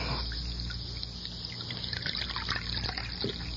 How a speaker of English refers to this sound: Let me pour you some coffee.